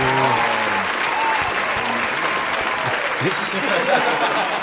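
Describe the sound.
A crowd at a special event applauds steadily as a speaker is introduced, dense clapping filling the whole stretch at an even loud level, with a few voices calling out briefly underneath near the start.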